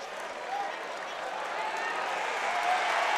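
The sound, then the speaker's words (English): A big indoor crowd at a basketball game in Waco, the Bears against Kansas, roars and cheers steadily for Matthew Meyer checking in, a dense wall of voices that holds without pause and swells slightly toward the end. “As you can hear, the crowd really getting into it, and that's not for Freddie Gillespie, that's for Matthew Meyer.”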